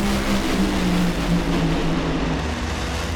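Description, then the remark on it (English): Loud, steady roar of four funny car drag racing engines during Ron Capps's run at the NHRA U.S. Nationals at Lucas Oil Raceway in Indy, a dense rumbling drone with a low droning pitch that holds constant for a few seconds with no voices. “Four funny cars run by four different crew chiefs using two different clutch systems.”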